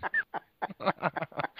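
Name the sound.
ducks quacking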